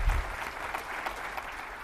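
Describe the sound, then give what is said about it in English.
An audience claps steadily to welcome speaker Renee Shaw, a dense, continuous wash of applause, many hands patting at once at an even, moderate loudness with no voices on top. “So please give a warm welcome to Renee Shaw.”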